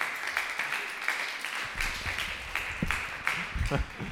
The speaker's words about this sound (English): Hey, another round of applause for him, huh?